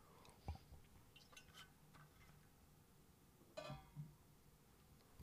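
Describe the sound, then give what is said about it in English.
A quiet sip of water followed by soft swallowing sounds, a few brief wet mouth noises spread over a few seconds with a faint background hum and no talking. “There was, excuse me, I'm just taking a sip of my water.”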